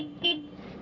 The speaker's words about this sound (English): That was a friendly honk for the school bus to go, but they're not going. They're going.